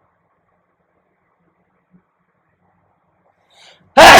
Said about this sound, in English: Wait, let me sneeze first.